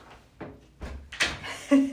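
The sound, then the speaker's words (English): A door being pushed shut in a bathroom, with a few short knocks and rattles of handling that end in a firmer latch-like thud. No one speaks. “So, hold on, let me close this door.”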